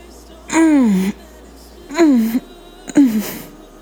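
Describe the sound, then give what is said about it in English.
A man lets out three moans as he climaxes during sex, each sliding downward in pitch. The first is the longest, and short pauses separate the later, briefer ones. No words are spoken. “He let out a lengthy moan before emptying into the condom.”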